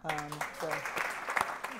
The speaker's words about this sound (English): You have to applaud after every phrase that she utters.